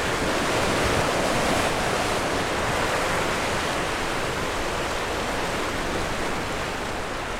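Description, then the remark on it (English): A loud, steady roar of churning water as the Severn Bore, a huge tidal wave, surges along the River Severn in Britain and splashes along the bank as it goes past, a dense rushing wash that holds constant throughout with no voices. “Encountering the surging Severn Bore on an atmospheric walk beside Britain's”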